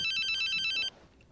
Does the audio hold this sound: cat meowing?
no